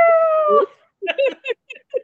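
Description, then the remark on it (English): A person mimics a coyote: one sustained, wavering howl that drops in pitch at the end, then a quick run of short yips and barks. Fairly loud, with no other sounds. “But I'm pretty good at calling in the coyotes and the dogs, so I don't think you.”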